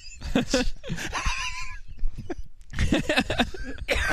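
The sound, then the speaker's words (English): Several harsh coughs burst loudly right into a microphone in uneven clusters, with breathy, laugh-like sounds in between. “Yeah, cough into the mic.”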